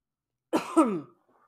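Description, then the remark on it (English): A single short cough, a rough throaty burst that trails off after about half a second, followed by quiet. “Excuse me if you hear me cough.”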